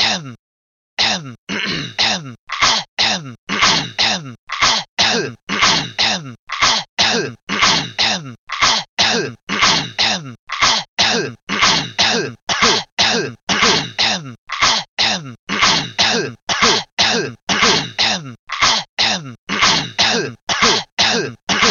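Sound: coughing and throat clearing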